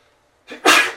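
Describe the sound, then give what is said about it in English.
A single loud sneeze: a short breathy intake followed by a sharp, explosive burst that fades quickly, with no talking. “Bless you. Bless you, my son.”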